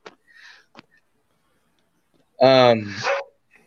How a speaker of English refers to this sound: No, it's my dog. I don't know what's going on in the hallway. There's a meeting.